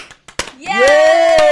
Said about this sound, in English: So wherever you are listening to this podcast, please abruptly stop what you're doing and just give a big, out loud round of applause for our guest